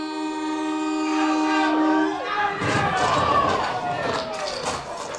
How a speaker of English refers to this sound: a viral video circulating of a young Indian man trying to take a selfie while a train is approaching. The horn blares.